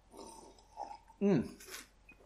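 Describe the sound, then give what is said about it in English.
A quiet sip of Wild Turkey 101 bourbon on the rocks from a glass, followed by a short voiced, satisfied exhale and a soft slurping rustle, with a faint clink near the end. “So today, while I read this chapter, I am going to be sipping on a delicious glass of Wild Turkey 101 on the rocks.”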